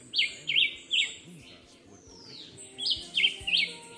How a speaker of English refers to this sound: Also known as the black-whiskered vireo, the Julian Chivi is a small songbird that lives in the forests around Adjuntas.